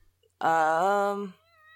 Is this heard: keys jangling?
no